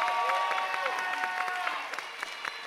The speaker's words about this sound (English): Right. Where's the applause